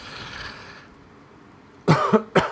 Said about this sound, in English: Oh dear, right in cue there's a cough. Do I have it? Please God, no.